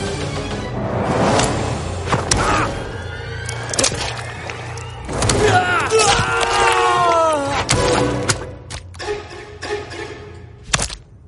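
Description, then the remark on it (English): A Mortal Kombat fatality by Jason: he grabs the opponent by the leg and slams them on the ground, several heavy thuds mixed with whooshes, grunts and a dense, loud game soundtrack throughout. “It's a little messed up, though, because he just, like, grabs him by the leg and slams them on the ground, which, you know, any Mortal Kombat character should be able to get up from that.”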